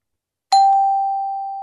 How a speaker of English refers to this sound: Excuse me, my doorbell's ringing. I need to...